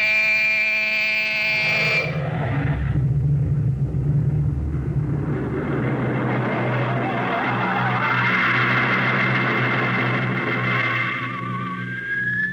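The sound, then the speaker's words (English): A rocket ship blasts off: a harsh, buzzing alarm tone sounds for two seconds, then gives way to a loud, deep roar that swells into a rushing hiss, with a whine rising at the end. “Ready your rockets. Prepare to blast off on navigator signal.”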